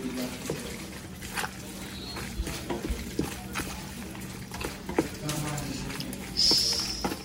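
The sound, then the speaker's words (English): Wet, squelching stirring sounds with irregular scrapes and clinks against a pot, moderately loud, as cooked macaroni is mixed with a tomato mixture poured into it. “And mixing it up.”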